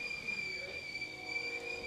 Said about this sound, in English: Got the steam kettle in the background. Yeah. More coffee on the way. Hell yeah. My beautiful bride making some coffee.